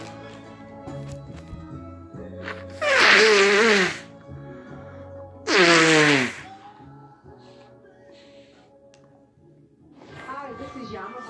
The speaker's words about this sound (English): I had to blow my nose off. You didn't want to hit the pause button. Just want to keep it moving.